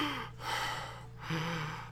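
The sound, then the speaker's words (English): A voice imitates heavy breathing into a lavalier microphone held too close to the mouth: two loud, rasping breaths in a row, each a rushing, hissy inhale or exhale over a faint low hum. “I had a lavalier mic, so you just hear me breathing.”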